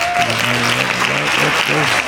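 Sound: hand claps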